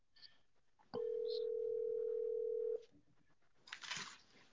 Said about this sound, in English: Can y'all hear me? Yeah, we hear the phone ringing.